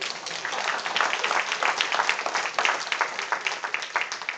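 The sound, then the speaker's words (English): An audience claps together in a steady, dense patter of many hands, fairly loud and sustained for several seconds with no one speaking over it. “If you got that, give me a little clap.”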